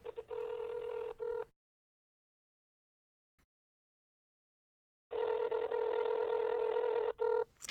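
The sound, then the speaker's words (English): An Android phone ringtone for a call plays in two bursts separated by several seconds of silence, each a steady electronic tone with a strong melodic band, moderately loud, with no talking. “Like a phone ringing.”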